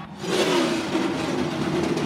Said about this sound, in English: And there's the command to fire the engines on pit road as we get ready for the start of the New Hampshire 300. On pit road, it will be a little bit longer than normal for them to sit there and warm up the fluids on those cars